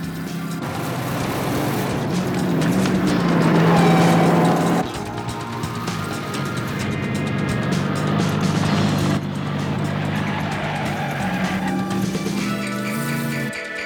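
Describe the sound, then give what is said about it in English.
Cars driven by stunt drivers roar at high speed through an echoing tunnel, engines revving loudly and continuously with shifting pitch, punctuated by tire squeals as they skid; no one speaks. “These are all stunt guys driving these cars.”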